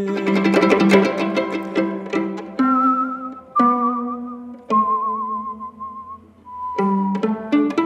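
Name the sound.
human whistling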